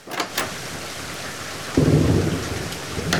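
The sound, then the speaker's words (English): Steady rain hisses throughout while a deep roll of thunder rumbles in partway through, swelling loudly and then fading into the downpour. A few sharp drips patter. “But my mom would always go on the front porch and she loved to watch the storm.”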